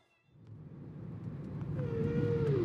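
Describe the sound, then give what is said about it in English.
A long, drawn-out whale call from a CD of whale sounds played in a car moans and slowly bends in pitch over a deep, steady rumble that swells gradually louder, with no voices present. “Let's pump those Whale Sounds and get back on the road.”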